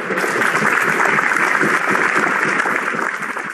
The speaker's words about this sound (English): Romeo is visibly emotional here, and his colleagues are clapping to support him.